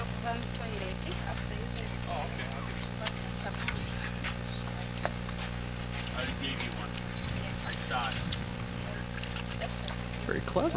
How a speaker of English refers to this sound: This was how she created running water.